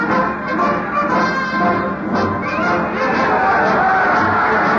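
A large crowd in the street cheers and shouts at the news of war in a loud, continuous roar of many voices that holds steady throughout with little letup.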